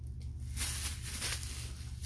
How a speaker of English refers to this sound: It's a plastic bag. So sorry if you hear that.